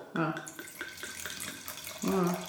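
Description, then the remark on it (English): Wine pours into a glass, a steady splashing trickle with a few faint clinks, while a voice murmurs briefly at the start and end. “Oh, I need to pour you more than that.”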